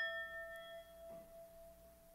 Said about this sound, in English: Wait, you know what we need? Oh, ring the Tibetan bell or Tibetan bowl.